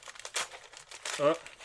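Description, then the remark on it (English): Crinkling and rustling of wrapping paper in a few quick bursts as a small gift package holding pink dice is opened, with a brief voiced sound from another person. “I'm going to open the small thing first, okay? Okay. Sounds like there's some stuff rustling around in there.”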